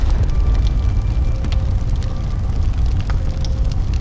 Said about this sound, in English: The charred body does not stop. It leaves behind footsteps filled with embers, lighting the surrounding crops on fire.